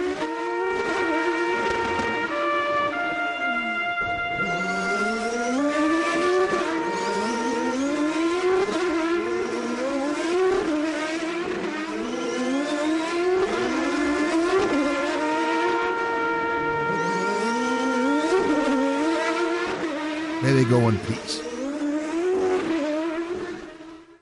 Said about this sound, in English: I have these few moments as we say goodbye to the Champ Car World Series and the beautiful sound of the Champ Car Turbos.